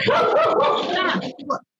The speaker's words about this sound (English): There goes my dog. See, I told you it's thrilling.